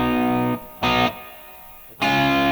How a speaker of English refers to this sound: If you can tune that third down, your guitar will sing no matter how much distortion you have.